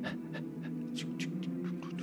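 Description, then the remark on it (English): A person imitates the panting of a dog running beside a young boy jogging into the Restlands, with about eight quick, breathy huffs in a steady rhythm over a low hum, with no words spoken. “There's a dog beside him, just...”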